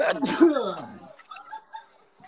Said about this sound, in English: I just sneeze.